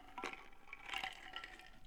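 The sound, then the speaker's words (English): A few quick slurping sips of Coke Zero from a copper Yeti metal tumbler, with soft liquid gurgles and a faint clink, moderately quiet with no talking. “Continuing on writing on page 147 after I take a sip of Coke Zero from the Copper Yeti.”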